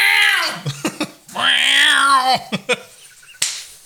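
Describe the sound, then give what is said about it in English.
A cat meows twice, a drawn-out first call and then a longer, wavering one, with a few sharp clicks and taps in between and after. “How did the cat make it into there?”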